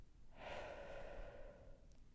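A single long, deep breath, airy, swelling quickly and then trailing off over about a second and a half, with no talking around it.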